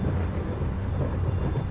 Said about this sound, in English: You hear strange, muffled storm clouds, flashes of lightning every now and again.